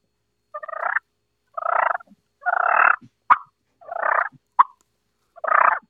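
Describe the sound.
A voice imitates a turkey's purr call by gargling the throat and vibrating the uvula: throaty, gargling rattles in five short vibrating bursts in an even rhythm, broken by two sharp clicks, with no talking.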